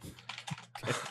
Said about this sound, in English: I'm busy typing in a chat right now.